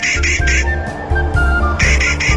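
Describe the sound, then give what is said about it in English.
A Clark's Nutcracker (Nucifraga columbiana) gives harsh, grating squawks in quick runs of three, loud, with a fainter raspy call between the bursts and a low rhythmic rumble underneath. “The Clark's Nutcracker, Nucifraga colombiana, today's Talkin' Birds featured feathered friend.”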